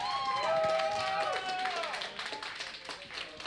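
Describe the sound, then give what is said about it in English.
An audience at Super Fun Time Trivia at the Raven Republic cheers and claps together, high whoops and shouts rising over a dense patter of applause that stays loud, then thins slightly toward the end. “I don't even like the TV show Cheers, let alone people actually cheering at me.”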